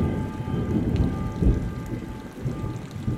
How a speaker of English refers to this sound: Are you not the gentle all-night rain? Are you not the roll of thunder? Is that not also you? Has that thunder ever stopped sounding?